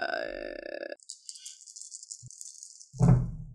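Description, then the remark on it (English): Four dice, rolled as hit dice in a tabletop role-playing game, clatter and rattle for about two seconds in a steady, hissy stream of small clicks, after a brief voiced sound, ending in a louder low-pitched thud. The roll comes up three tens and a 2. “Hey, just go ahead and roll all 4.”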